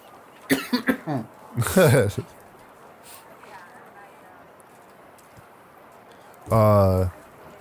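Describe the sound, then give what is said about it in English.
A man coughs in a quick cluster of harsh bursts, then a rougher hacking fit, and after a quiet pause lets out one longer, throaty, strained cough. Loud. “I'm an old man. I can cough.”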